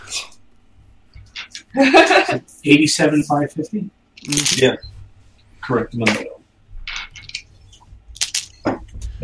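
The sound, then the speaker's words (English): Dice rattle and clatter in several quick bursts, their sharp clicks scattered across the stretch, with murmured voices mixed in between. “Lots of dice noises.”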